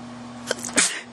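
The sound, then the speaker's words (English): A single sharp human sneeze, with a brief sharp inhale just before it, bursting out loud and breathy over a faint steady hum, then quickly fading. “Sneeze out of the way.”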